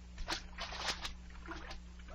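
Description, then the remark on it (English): A few brief watery splashes and sloshes as a person slips and tumbles into a pool of salt water, sounding fairly faint over a steady low hum, with no one speaking. “Salt water. Now how did that get?”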